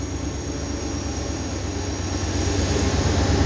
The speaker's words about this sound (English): So you're hearing that? Can shake when you hear that. There's a train.